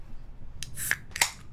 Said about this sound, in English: I was going to ask if you could hear that ice clinking in there.